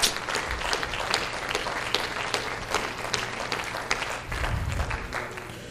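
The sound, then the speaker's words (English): A crowd of people clapping their hands together in praise to the Lord, a steady, sustained, dense wave of applause continuing for several seconds with no one speaking over it. “Come on, just clap your hands to the Lord and give him praise.”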